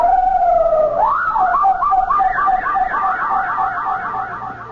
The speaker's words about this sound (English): But then, you see, it happened. The parrot made that incredible sound again.